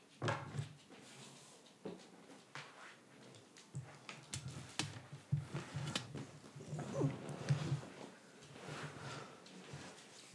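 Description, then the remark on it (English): A dog shuffles and rustles around behind a chair, with faint, brief whimpers breaking through the quiet scuffling and soft knocks. “I think he wants to sit in my chair, too.”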